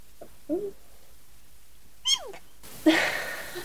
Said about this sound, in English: Bless you. Oh god, I'm still recording. Oh, we're not editing that out. Great. Great. Hey, you always had the cutest sneezes.